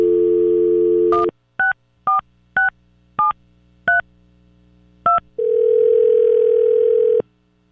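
A steady telephone dial tone, then seven quick keypad beeps as a number is dialed to call a listener on the B95 radio show, followed by a single long ring tone on the line. Clear, with no voices.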